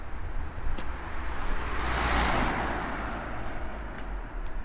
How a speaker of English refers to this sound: Quite impressive I managed to not be hit by that car.